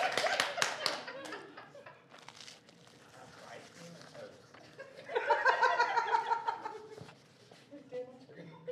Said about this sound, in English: What are we clapping for?